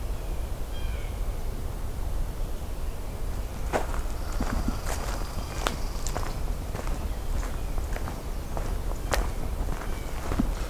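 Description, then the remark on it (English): Footsteps crunch along a trail in a national park near Johnston Harbor, very early on a still morning just after sunrise in 2022, in an uneven walking rhythm, crisp and moderately loud over a steady low rumble, with a brief faint bird chirp near the start. “And we're going to walk along and see what else we get.”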